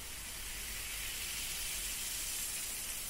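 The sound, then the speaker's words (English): A steady, soft fizzing hiss of ear-cleaning solution dropped into one ear, fizzing to loosen up before it drains, runs evenly for a few seconds with no talking and no breaks. “it's going to sort of fizz a little bit in your ear”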